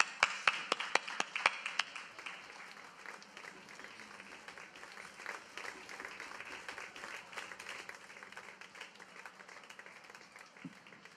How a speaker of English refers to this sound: Thank you so much. We'll give you a nice cheer here.